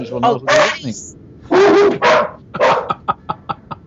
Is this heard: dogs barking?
yes